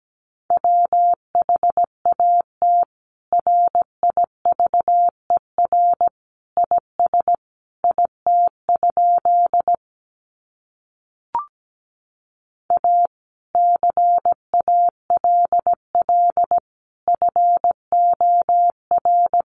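A steady, mid-pitched Morse code tone keys on and off in quick dots and dashes at a moderate 17 words per minute, sending practice sentences from the top 300 words, with a short silent gap and a single click midway.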